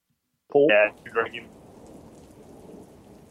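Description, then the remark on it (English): Steady, hissing rain from a storm fills the background with a low rumbling wash of thunder beneath it, opening with two brief, loud voice-like bursts before settling into a continuous stormy roar. “Must be the storm. It must be the storm.”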